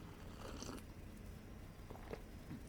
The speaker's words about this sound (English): Got to take another sip of tea here.